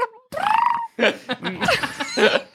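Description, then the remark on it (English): A person's voice makes a string of warbling, bird-like chirps and squeaks in several short, loud bursts, imitating a bird, with no actual words spoken. “Now he's just chirping. This is a new development.”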